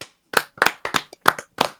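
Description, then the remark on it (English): Several sharp hand claps in an uneven rhythm, about five or six bright, percussive cracks spaced roughly a third of a second apart, with no talking, clapping out the end of a show. “Let's clap it out.”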